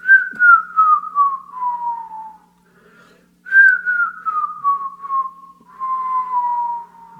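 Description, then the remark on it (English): A person whistles a slow, mournful birdsong imitation: two long descending phrases, each gliding downward in pitch with a slight warble, separated by a brief pause. “And you can clearly hear a bird. And it's singing kind of a sad song, like...”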